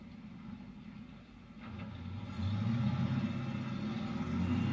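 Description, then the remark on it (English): Low rumbling street traffic swells as vehicles pass, a steady engine drone building louder toward the end, with no voices. “Don't we have to let the traffic go?”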